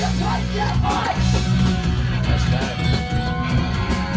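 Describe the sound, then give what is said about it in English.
A loud, dense wall of crowd noise from a live gig in Japan, with many voices yelling and shouting together continuously, packed and steady with no clear breaks. “I can see you guys get the fucking crowd going for sure.”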